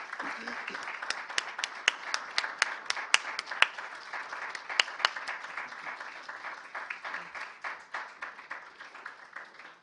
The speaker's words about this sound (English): If you would give them one more round of applause.